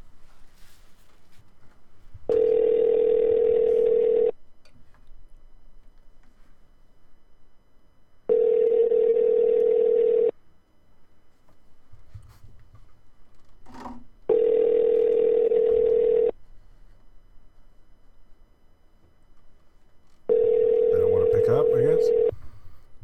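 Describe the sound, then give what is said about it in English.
A telephone line rings four times as a call is placed to the Carl Malone Toyota dealership. Each long, steady tone lasts about two seconds with even pauses between, loud and clear over a faint, low background hum. “And then we'll be back with a phone call to Carl Malone Toyota.”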